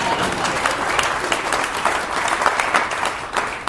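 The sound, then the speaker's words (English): An audience of broadcasters applauds steadily, a dense wash of many hands clapping at once with sharp individual claps scattered through, holding at an even, fairly loud level for a few seconds. “You're supposed to applaud.”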